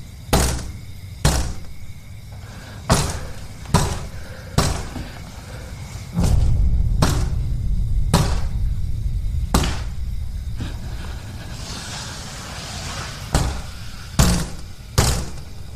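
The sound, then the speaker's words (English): Repeated hard banging on a window, done with a dead body rather than a hand: a dozen or so loud, sharp thuds at uneven intervals, some in quick pairs, with a low rumbling noise underneath partway through. “So yeah, he's banging on the window, but not with his hand.”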